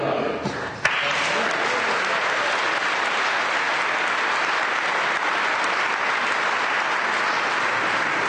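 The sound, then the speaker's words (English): A crowd bursts into sustained, loud applause, a dense steady patter of many hands clapping that holds evenly for several seconds after a brief quieter start. “And what a fantastic round of applause.”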